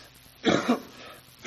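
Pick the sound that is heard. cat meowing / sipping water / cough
cough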